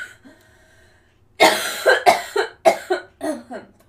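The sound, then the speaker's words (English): A loud fit of coughing: about six harsh coughs in quick succession after a quiet start, each a sharp burst with a short gap between, no talking. “I have to cough again.”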